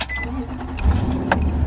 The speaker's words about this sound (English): I'm going to start the car up.